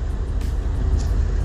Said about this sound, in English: I'm not in my usual truck, so I've got to actually do the shifting myself. My other truck is an automatic.